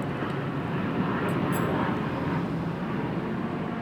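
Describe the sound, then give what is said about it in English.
A steady, dense internal combustion engine drone fills the scene, a continuous low rumble with broad midrange roar, with no voices. “I don't hear people very much. It's the internal combustion engine.”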